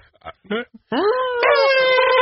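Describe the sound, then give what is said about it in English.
A person imitates an elephant trumpeting: a few short vocal grunts, then one long, loud, brassy cry that rises and holds for over a second. “Do an elephant sound for me.”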